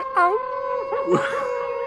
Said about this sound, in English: That the sound of the wolf is like that classic stock wolf sound